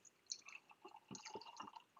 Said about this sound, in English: Are you pouring whiskey? Yeah. Yeah, my dude. All right. We're going to get such good Foley. Oh, such good Foley.